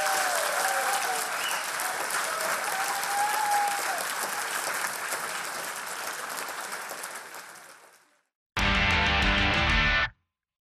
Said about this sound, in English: Ladies and gentlemen, please give a massive round of applause to Professor Lance Workman.